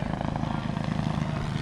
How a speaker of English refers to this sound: We got Fringe, we got helicopters. Helicopter coming over.